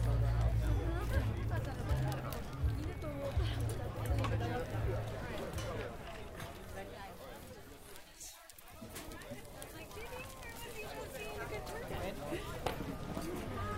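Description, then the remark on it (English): Busy outdoor crowd murmur at the Rose Bowl Flea Market in Pasadena, California, with many overlapping voices, footsteps and scattered clattering, a steady moderate-level bustle with a brief dip in the middle before the chatter resumes. “at the Rose Bowl Flea Market in Pasadena, California.”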